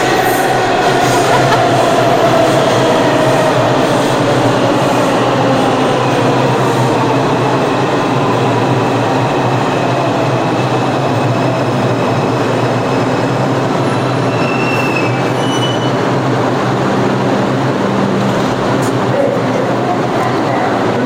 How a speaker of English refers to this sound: here comes a train into the station